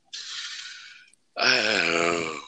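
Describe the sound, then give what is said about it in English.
A single drawn-out yawn: a breathy inhale, a short pause, then a loud voiced exhale that slides downward in pitch, with no talking. “That makes me yawn thinking about the X-Men movies now.”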